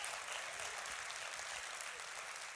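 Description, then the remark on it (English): Steady, dense applause from a crowd of 200 people at a church service, a continuous wash of many hands clapping at an even level with no voices standing out. “And if you're wrestling with that faith, I want you to hear the eruption of applause by 200 people that is your story.”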